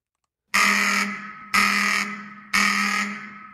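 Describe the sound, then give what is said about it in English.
An apartment building fire alarm rings in three loud, harsh bursts of about half a second each, evenly spaced with short gaps, each blast decaying slightly as it echoes indoors, while it is minus 20 outside. No voices are present. “I'm monitoring whether or not this is a false alarm, because oftentimes in apartments, it's not worth it to get out of the building”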